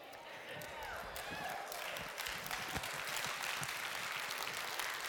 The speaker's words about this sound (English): I didn't think we would be cheering about that, but that's okay. We can cheer about that.